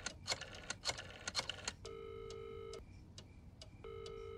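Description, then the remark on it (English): Senator Montgomery dials a telephone in Gotham to leave a message for the assistant DA: a quick run of sharp clicks, followed by two bursts of a steady electronic ringing tone from the line, fairly clear, with no voices. “I need to make a phone call.”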